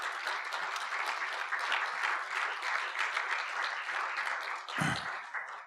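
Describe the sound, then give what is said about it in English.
An audience gives God a round of applause during a sermon, a steady, loud, dense wash of many hands clapping that holds evenly for several seconds, with a brief low thump near the end as it starts to fade. “Just give God a round of applause.”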